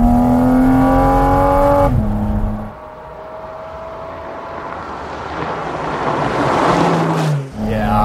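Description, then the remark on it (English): A Cayman sports car engine roars, its intake note climbing in pitch as it accelerates hard through gears down a road, with brief dips at each shift and wind rushing over the microphone; the intake sits right behind the driver's head. “The driving experience with the sound and the intake right here behind your head.”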